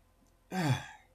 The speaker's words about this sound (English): I'm sorry if I'm sniffling. I'm just now getting over the COVID, so it's slowly, you know, deteriorating. Slowly going away, and I'm feeling much better.